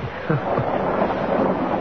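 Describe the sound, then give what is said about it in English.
A steady, dense hiss of heavy rain pouring over a car windshield fills the scene without a break, with a faint low murmur beneath it; no distinct thunder rumble stands out. “In spite of the rain pouring over the windshield, in spite of the dramatic lightning and the rolling thunder,”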